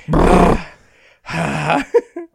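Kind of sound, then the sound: vocal imitation, imitated heavy breathing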